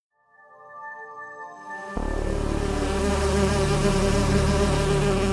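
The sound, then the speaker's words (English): An Asian giant hornet (murder hornet) buzzes, a steady droning whine that swells and then jumps to a louder, rougher, fuller buzz that continues without pause. No one speaks. “And we started by looking at murder hornets, or Asian giant hornets.”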